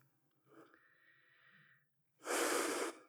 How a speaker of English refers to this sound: I take a deeper in breath and out breath.